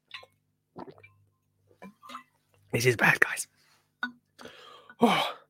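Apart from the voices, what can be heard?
hiccups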